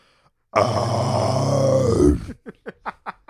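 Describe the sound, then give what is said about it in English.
A person imitates the sound they make when vomiting: a loud, strained, guttural heave held for about a second and a half, trailing off into six short, rhythmic gasping pants. “This is what I sound like when I puke.”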